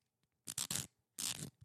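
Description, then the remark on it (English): Crisp papery riffling of a stack of hypothetical-question cards being shuffled: a quick three-part burst, a short pause, then a longer flutter, ending with a soft tap. “I think I got time to shuffle through here and pick.”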